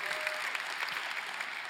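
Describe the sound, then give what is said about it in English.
Steady applause from an audience for the speaker's 12-year wedding anniversary, a dense patter of many hands clapping at an even level for a couple of seconds. “So you clap about that.”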